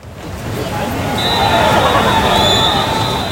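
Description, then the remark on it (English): A crowd cheers and shouts over the steady roar of rushing whitewater rapids on the Gali River, cheering because a paddler has gone into the water, with a shrill, sustained whistle-like cry rising above the noise partway through. “Cheers generally mean that somebody is going in the water.”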